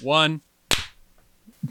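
A single sharp hand clap rings out right after a short burst of voice, its crisp snap decaying quickly, followed by a brief murmur of speech at the end.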